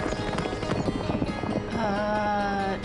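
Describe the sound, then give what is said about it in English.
Rapid hoofbeats of a horse being ridden fast by a man pound in a steady galloping rhythm, then give way to a loud, drawn-out whinny near the end. “When you see a black man on a horse going that fast, you just gotta let him fly.”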